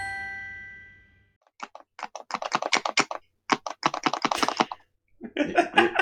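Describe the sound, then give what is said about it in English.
A fading tone gives way to rapid plastic clicking from a Purell hand sanitizer bottle, arriving in quick bursts with a brief pause before a final flurry. No one speaks. “You having fun with that was on the recording. Whatever you're clicking there”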